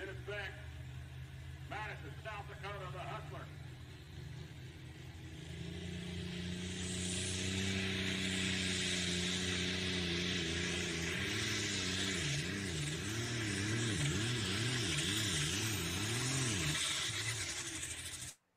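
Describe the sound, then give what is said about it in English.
A loud Beck tractor engine roars and revs steadily, its pitch climbing and then wavering up and down as the machine makes a few passes, continuing for the whole stretch. “let's watch one more video here of a few passes of the Beck tractor coming up here.”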